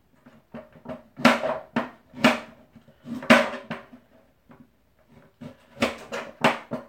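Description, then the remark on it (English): A knife julienne-chops two medium carrots lengthwise on a cutting board in quick, irregular bursts of sharp, crisp taps. Short pauses separate the bursts, with no talking over them. “So right now I'm julienning to some extent, or long way chopping the carrots, which are going to get cooked down with the onions and the garlic.”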